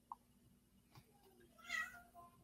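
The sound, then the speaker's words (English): A cat lets out a single drawn-out meow, fairly quiet, with a faint click and a soft knock just before it and no one talking. “So, that fucking cat.”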